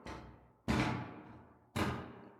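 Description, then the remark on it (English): Loud, heavy footsteps of something very large thudding overhead, sounding like claws and hooves on metal: three booming, unevenly spaced impacts, each with a deep low rumble that rings out and fades slowly before the next lands. No voices. “These loud, terrifying footsteps.”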